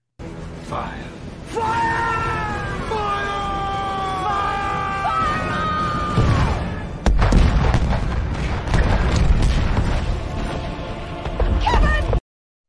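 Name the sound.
cannon fire sound effect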